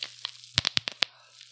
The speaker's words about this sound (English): Now, if you really want to pop a few bubbles at a time, what you want to do is twist. Hear that? At least 8.